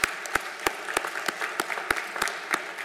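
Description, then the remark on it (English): An audience claps together in a steady, even rhythm, sharp unison claps about three per second standing out over a dense wash of scattered clapping, with no talking. “Let's clap on that. Would you clap on that?”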